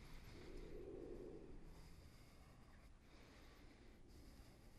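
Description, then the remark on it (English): A deep, rushing yoga breath, like ocean surf, swells loudest in the first second and a half, then continues as a steady, softer airy hiss, with no one speaking. “Good breathing, stay with it.”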